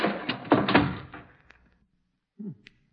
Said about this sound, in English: Ah, the door sticks now. Hinge's rusty. Come on, Watson, get your back into it. It's moving, Holmes. Yes, so is that crack. Hurry, help me close the door before the archway falls on us.